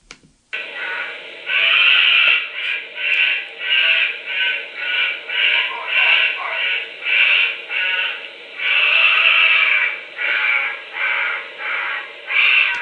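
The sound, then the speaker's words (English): A honey badger screams in a continuous series of harsh, raspy calls, loud and rhythmic, each burst swelling and breaking off in quick succession with no voices present. “So this is a honey badger scream vocalization.”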